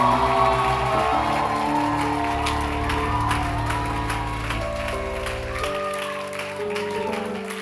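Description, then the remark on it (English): A church audience claps and shouts loudly to the King of Kings, the King of Glory, over sustained organ-like chords, with shouts and whoops rising throughout, the noise steady and enthusiastic for several seconds. “I want us to give a louder clap and a louder shout to the King of Kings, to the King of Glory.”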